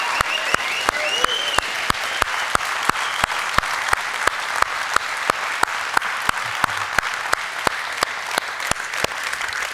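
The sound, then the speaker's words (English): An audience gives a round of support applause for people as they leave. It lasts about ten seconds, a dense wash of many hands clapping, with sharp, evenly spaced claps cutting through in a regular rhythm. No one speaks. “You guys, before these folks leave and as they leave, would you just give them an astronomical round of support applause?”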